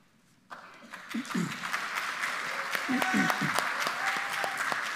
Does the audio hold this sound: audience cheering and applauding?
yes